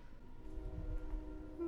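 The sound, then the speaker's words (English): A short train sound effect: a low rumbling roll with steady horn-like tones layered on top, fairly quiet and continuous, with no voices over it. “And I think that's officially the final train of True Hollywood Crime Podcast.”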